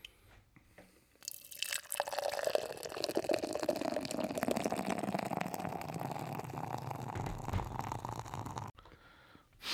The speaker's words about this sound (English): First beer is poured out.